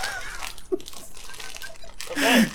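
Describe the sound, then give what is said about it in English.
Crinkly rustling of a plastic bag being handled under a desk, continuous with irregular bursts, with faint voice sounds mixed in and a brief vocal sound near the end. “… rustling his bag under the desk.”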